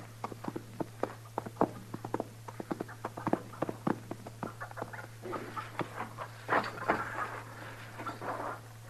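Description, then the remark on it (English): A horse's hooves clatter in a quick, uneven run of sharp knocks, busy at first and then breaking into scuffing and rustling, heard alone over a steady low hum with no talking. “Your horse is scattered away.”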